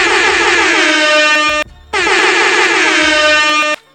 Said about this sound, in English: We are recording on 420. So 420 is here. Little air horns for that.